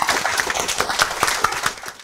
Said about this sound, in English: And can we give one last clap to the team that have done the work over 4 years? Thank you very much.